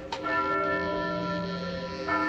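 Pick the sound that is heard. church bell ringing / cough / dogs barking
church bell ringing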